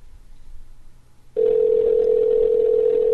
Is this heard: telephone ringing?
yes